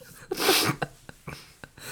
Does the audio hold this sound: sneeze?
yes